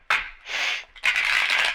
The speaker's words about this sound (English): And shuffle these cards.